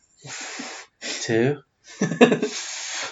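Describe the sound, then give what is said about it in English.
Someone blows up a balloon by mouth in an office: three forceful, breathy puffs, the later ones carrying a strained, voiced edge, with brief pauses between breaths. “So you can do a whole 4. Balloon in one breath.”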